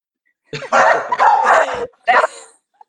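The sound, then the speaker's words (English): Dogs bark loudly in two bursts, a long run of overlapping, drawn-out barks followed by a shorter one, with no talking. “No, I told you the dogs would start barking at one point, like clockwork.”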